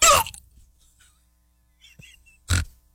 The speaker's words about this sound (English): And I've got the hiccups. Tried to do it again. I did. Wow. How did I do that? That's weird.